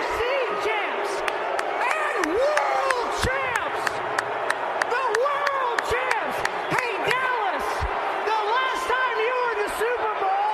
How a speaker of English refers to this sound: It had a good wrestling-like pop to it with everyone booing really loud.